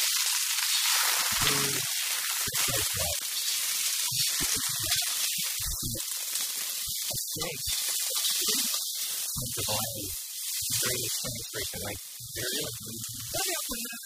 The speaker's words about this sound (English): It's time to talk snacks. It's time to talk food. Let's get some sizzle going, Mr. Marathon.